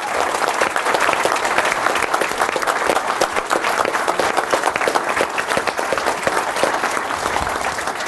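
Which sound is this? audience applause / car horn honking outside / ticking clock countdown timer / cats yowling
audience applause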